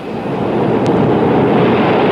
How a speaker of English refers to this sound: It's the tide! It comes in faster than an express train. Is it always like this? Twice a day.